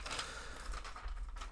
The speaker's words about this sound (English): sorry for all the rustling